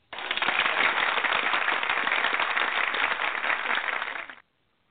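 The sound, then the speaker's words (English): A burst of dense, steady applause sound effect, like a canned crowd clapping, played for the second induction into the Baseball Hall of Infamy, lasts about four seconds at an even loudness, then cuts off abruptly with no voices over it. “For the second induction into the Baseball Hall of Infamy, I have to have the applause ready here.”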